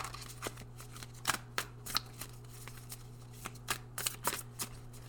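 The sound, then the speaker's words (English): Cards being given a quick shuffle before a card reading, a series of crisp papery riffles and snaps in irregular bursts over a steady low hum, with no talking. “So I'm grabbing our cards and just doing a quick shuffle.”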